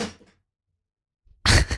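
A clatter of objects being knocked over: a crash that fades quickly, a second of silence, then a louder, harsher burst of clattering that cuts off at the end. No one speaks.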